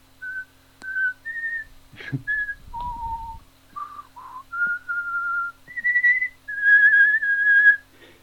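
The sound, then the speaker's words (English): A person whistles through their teeth: a run of sustained, clear notes at shifting pitches with brief gaps and a few sliding tones, plus a breathy puff partway through. “I think you've got quite a nice whistle.”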